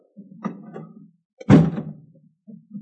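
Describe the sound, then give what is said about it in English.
A door is opened, with low scraping and rattling, then a single solid thunk midway before quieter shuffling sounds trail off. No one speaks. “I'll open the door, will you?”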